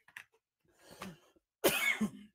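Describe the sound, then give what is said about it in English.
A person coughs several times: a small catch, a rougher throaty cough, then a loud harsh burst that trails off, with brief pauses between and no talking. “Pardon me for that coughing.”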